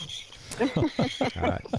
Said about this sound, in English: Good night, John Boy, with the cicadas in the background.